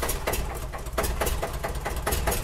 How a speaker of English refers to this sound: By the way, you hear that background noise, guys. Sorry. It's, again, we're still waiting for our air conditioning unit here. So these are a plethora of fans that are... You hear it?